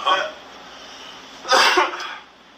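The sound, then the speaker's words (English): Two harsh, breathy coughs from someone: a shorter one at the start, then a louder, raspier burst after a pause, trailing off into quiet. “Oh, the cough burns.”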